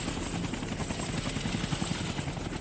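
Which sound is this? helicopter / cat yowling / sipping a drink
helicopter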